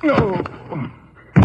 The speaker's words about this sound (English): Hey, you slugged him with a gun.